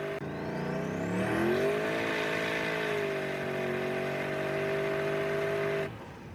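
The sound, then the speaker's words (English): A loud car engine revs upward, its pitch climbing, then holds and slowly eases lower as it winds down before cutting off abruptly. No voices are heard. “I put my head you hear that? Fucking them winding down.”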